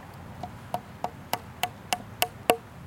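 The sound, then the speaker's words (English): A hammer drives a nail into wood right by a knot, with about nine sharp, ringing taps at a steady quick rhythm, each strike a little louder than the last, with no talking. “Oh my God, I can't aim this hammer for the life of me. It's hard. It's right by a knot.”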